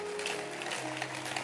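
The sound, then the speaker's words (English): An audience of pastors and church members claps together in a steady, dense patter of many hands, moderately loud and continuous throughout, with a faint low hum running underneath. “So clap your hands that we are together.”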